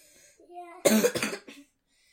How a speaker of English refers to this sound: that's a bit of a cough.